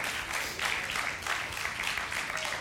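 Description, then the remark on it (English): An audience claps steadily, a dense crackling wash of many hands that swells slightly in loose waves. No voices are heard over it. “Go ahead and clap.”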